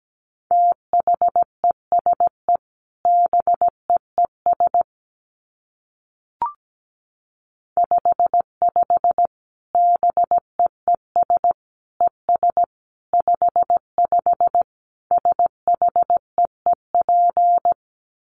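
Morse code practice tones at 17 words per minute: a single steady mid-pitched beep keyed on and off in quick dots and dashes, grouped into letters with short pauses, played alone with no talking.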